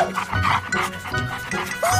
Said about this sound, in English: A dog? Wow! Where did you come from?